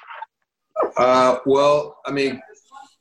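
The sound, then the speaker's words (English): A dog barks three times in quick succession at a person at the door, loud, each bark sharp and full-throated, with a short pause between them. “My dog's barking at the person at the door.”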